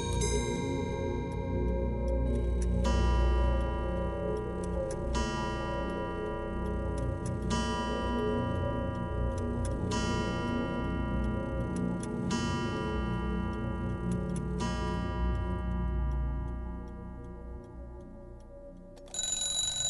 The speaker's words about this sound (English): We're in a shop called Timepiece Antiques. It's the only clock shop in Dublin City. And here we conduct the restoration of pre-20th century clocks of all shapes, designs and origins.